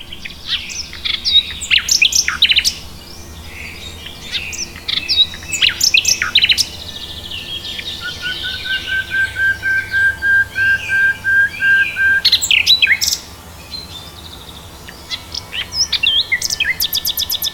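A nightingale sings: rich whistles and sharp chirps, then a long run of rapid repeated notes, with varied phrases resuming after a brief pause, all without any talking.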